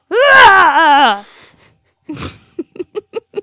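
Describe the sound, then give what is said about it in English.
A person imitates a roar with a loud, drawn-out, wavering vocal howl, then a pause, a breathy rasp and five short rhythmic grunts. “To my cabbages song or my roar?”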